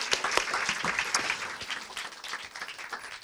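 An audience applauds two guest speakers at the close of a talk, a dense wash of many hands clapping steadily at a fairly loud level, slowly tapering off toward the end without any voices.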